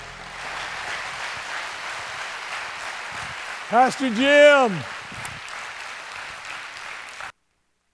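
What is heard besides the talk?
audience hand clapping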